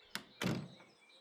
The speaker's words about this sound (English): The bright blue front door opened a crack, then shut quietly.